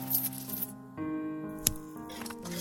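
A short wet squish with a sharp click partway through as a knife cuts into a water-filled bubble under wallpaper and water squishes out, heard over a steady low hum.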